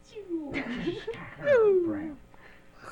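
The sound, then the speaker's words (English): A big cat, a Capellan power cat, snarls and roars in drawn-out, wavering yowls that slide downward in pitch, the loudest cry rising midway through, with voices faintly mixed underneath. “The Capellan Power Cat!”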